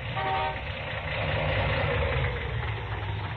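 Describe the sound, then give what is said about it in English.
A car engine idles roughly and unevenly, a steady low rumble with a slightly sputtering, misfiring rhythm that runs continuously for a few seconds with no voices. “Engine, huh? Hasn't got the pickup of a kitty car. Well, it's misfiring some.”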